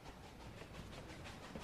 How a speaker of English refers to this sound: do you hear that? What's that? Does that sound like a train to you? Choo-choo!